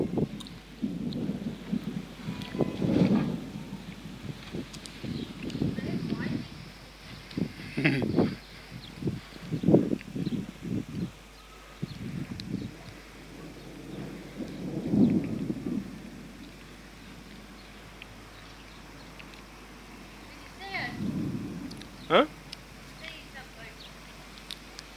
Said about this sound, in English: Yeah, I'm just showing them the lightning and thunder. It looks funny because on this side it's clear, but then on that side it's dark.